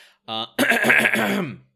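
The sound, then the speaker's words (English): Someone clears their throat loudly and close to the microphone: a short voiced grunt, then a longer, raspy, rumbling rasp lasting about a second, with no other sounds around it. “You clear your throat right into the microphone.”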